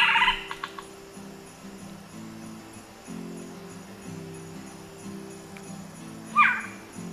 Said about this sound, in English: We can listen a little bit to the sounds of the screech owl as we go out here, something you might be hearing during your evenings.